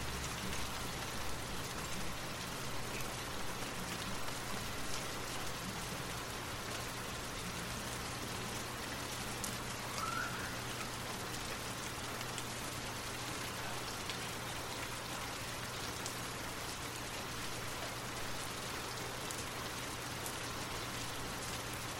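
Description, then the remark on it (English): Steady rain falls without pause, a dense, even hiss of drops pattering on a surface, with a faint low hum underneath and no voices. “Continue to focus on your breath and the sound of the rain as you drift off to sleep.”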